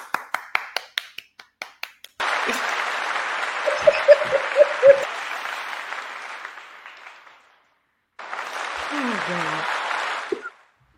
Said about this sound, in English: Oh, short and everything. That was a short applause